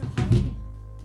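A door slams shut with one heavy, close thunk and a brief rattle, followed by a low room hum.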